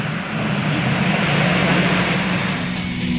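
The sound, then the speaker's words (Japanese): A loud engine roars to life, quickly settling into a steady, dense rushing noise with a low droning hum underneath, holding constant for a few seconds with no voices. “全システム準備完了。インジンエンジンスタート。”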